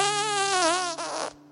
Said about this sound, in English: Farts.